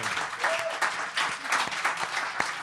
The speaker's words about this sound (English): So, you know, regardless, I think you deserve a round of applause for that.